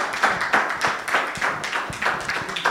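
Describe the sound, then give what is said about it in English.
An audience claps together in a steady rhythm, many hands striking at once in sharp, bright bursts roughly twice a second, with no voices standing out above the sound. “Keep clapping, please.”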